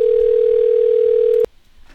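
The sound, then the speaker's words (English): A steady, loud telephone dial tone hums continuously for about a second and a half, then cuts off abruptly, leaving faint background noise. “I've got the dial tone ready, but as soon as I heard him dialing, I was like, shit.”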